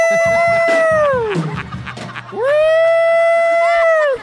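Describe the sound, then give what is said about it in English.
A person imitates a police siren, voicing two long, loud wailing tones that hold steady, slide down, then swoop back up, with no other talking. “I heard you got a job in West Hollywood making a noise for the police cars.”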